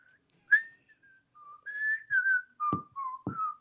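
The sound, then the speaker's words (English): A person whistles a fishing song theme melody, bright and tuneful, the clear notes gliding up and down in a steady rhythm with a couple of soft thumps underneath, fairly loud with no talking. “I don't know the title of it, and all I can do is whistle it.”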